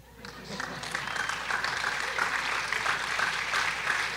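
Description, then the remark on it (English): An audience claps steadily, a dense, even patter of hands that swells in the first half second and holds at a fairly loud level throughout, with some cheering mixed in. “He doesn't usually get applause, but that's great.”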